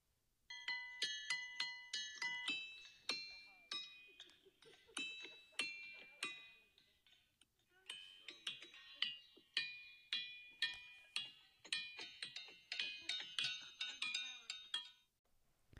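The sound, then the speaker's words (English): Ringing rocks at Ringing Rocks Park in Upper Black Eddy, Bucks County, struck one after another, each hit giving a clear, bell-like metallic tone that rings briefly. The strikes come in a fairly steady, rapid rhythm with overlapping chimes of varying pitch. “And I'm going to play for you right now sounds that have come from Ringing Rock.”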